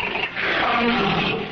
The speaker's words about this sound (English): In a cage next to mine roared a very hungry lion. As was the custom, he had been starved to put him in the proper mood for an encounter in the arena.